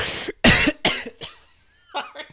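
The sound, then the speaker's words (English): A loud run of harsh coughs from a man, four in quick succession, followed after a short pause by a couple of softer, smaller coughs. “He does cough.”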